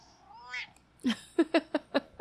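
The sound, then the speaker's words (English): A cat meows: first a drawn-out, rising, high-pitched cry, then a louder burst followed by a quick run of about five short, clipped meows in an uneven rhythm. No one speaks. “Meow, meow, meow, meow.”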